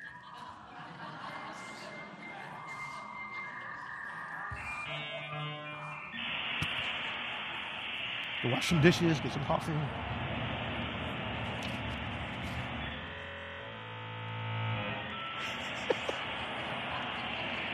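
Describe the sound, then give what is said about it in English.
A dial-up modem connecting: steady tones, then rapid stepping beeps give way to loud, harsh hissing static and shifting screeches that run for over ten seconds. A voice briefly speaks over it. “That's the sound of dial-up internet, for those who have never experienced that.”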